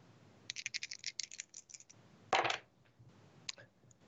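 Dice rolled during a role-playing game clatter and tumble across a hard tabletop in a quick series of sharp clicks, then a louder rattling burst and a few last taps as they settle on snake eyes. No one speaks.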